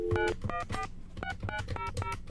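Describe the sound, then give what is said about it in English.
A rapid run of about eight short beeping tones at shifting pitches as a telephone number is dialed on a keypad, fairly loud, with no talking. “I don't think it's working. I don't think you know how to dial.”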